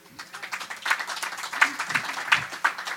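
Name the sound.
audience applause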